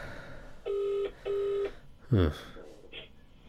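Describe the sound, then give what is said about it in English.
A telephone ringback tone on an outgoing call sounds as a double burst, two steady buzzing pulses close together, followed by a brief rising chirp and some faint line noise. “Still ringing.”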